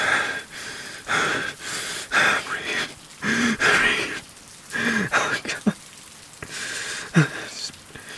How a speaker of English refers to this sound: The rain still falls, he feels cold, shivering.